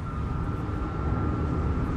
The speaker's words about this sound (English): It's the engine in Wheeler's car revved up to like 9,000 RPMs.